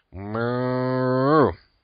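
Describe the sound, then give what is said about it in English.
A single long, loud cow moo used as a sound effect for Cow of the Week 2015, holding a steady low harmonic tone for over a second before rising slightly and cutting off, with no other sounds around it. “Roy Miller, you're our first Cow of the Week 2015.”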